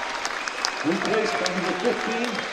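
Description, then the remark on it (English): A large home crowd at a football match, on their feet, applauds a goal by Jordan Preston in a steady, dense wash of clapping, with a man's voice talking over the cheering ovation after the first second. “Outstanding finish from Jordan Preston, and the home crowd show their appreciation. They're on their feet, and deservedly so.”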